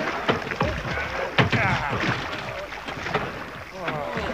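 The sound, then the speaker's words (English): Heavy wooden barrels thud and knock as they are loaded onto a boat on a river, a few dull bumps among steady water and wind noise, with indistinct voices murmuring. “Let's get them on board, then.”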